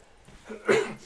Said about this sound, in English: A little cough just to end it.